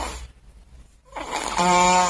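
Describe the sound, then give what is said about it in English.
A little boy on a couch snoring through a stuffy nose: a breathy intake builds into one loud, buzzing, nasal rattle, alone, with no talking. “A little boy on the couch snoring.”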